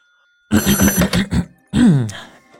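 A train cab telephone ringing, apparently imitated by a voice: a loud, buzzy trill pulsing rapidly for about a second, then a short pause and a lower drawn-out tone that slides downward.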